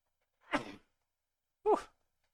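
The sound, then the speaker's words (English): A breathy rush of air, then about a second later a short, sharp, voiced burst of a person sneezing, fairly loud, with silence around it. “Uh-oh, got another one.”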